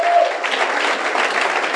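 An audience claps steadily once again for their pastor and his wife, a dense wash of many hands at a fairly loud, even level throughout the short stretch, with no voices standing out.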